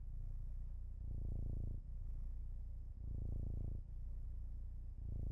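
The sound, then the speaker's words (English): A cat falling asleep purrs right up against the microphone, a loud, low rumbling that swells and fades in steady cycles with each breath, about two seconds apart, with no voices. “Oh, but guys, his purr is the most calming thing ever.”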